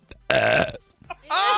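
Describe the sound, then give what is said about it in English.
A loud, croaky burp lasting about half a second, followed after a short pause by a brief higher-pitched voiced sound. “I think I just burped.”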